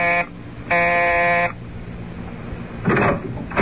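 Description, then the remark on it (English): Reporter Luke Harvey presses the doorbell marked Staley, landlord, at a brownstone house. The buzzer sounds twice, a brief buzz followed by a longer, steady one, both harsh and rasping. A few noisy clatters come after, with no talking. “But let us return to the present, and reporter Luke Harvey pressing the bell marked Staley, landlord, in his brownstone house.”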